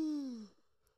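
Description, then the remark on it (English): A single voiced yawn, a drawn-out groaning tone that slides downward in pitch for about half a second before trailing off into near silence, with no talking. “Hold on, let me yawn.”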